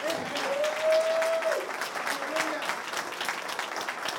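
audience applauding

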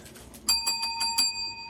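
bell being rung

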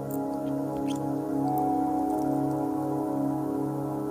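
light rain falling

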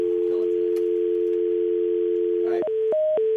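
telephone dial tone

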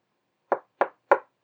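knocking on a door

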